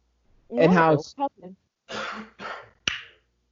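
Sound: coughing and throat clearing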